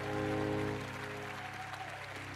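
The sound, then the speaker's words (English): A church audience bursts into a dense, steady wash of hand clapping for Jesus, loudest at the start and easing slightly, with sustained low musical tones humming beneath it. “Give Jesus a great hand clap for that mirror.”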